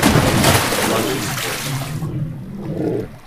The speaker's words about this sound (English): And just as he says, "Do you hear that?" a crocodile pops out from the water.